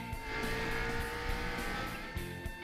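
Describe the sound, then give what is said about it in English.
A loud race car engine roars and revs continuously, with tires squealing on top, steady for a few seconds with no voices. “Gentlemen, start your engines. Kyle, floor it.”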